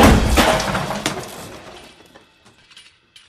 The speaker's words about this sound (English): Why do you suppose I just hurled a chair at your head